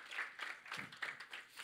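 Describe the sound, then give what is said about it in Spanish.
People applaud on the day of Pentecost during a worship gathering, a dense, steady patter of many hands clapping at once, moderately loud. “Y en este día, ok, denle un aplauso a ellos, pueden pasar a su lugar.”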